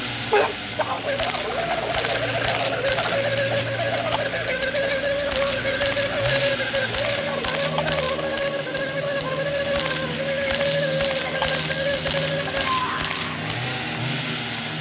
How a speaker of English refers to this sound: Oh my God, is that a chainsaw?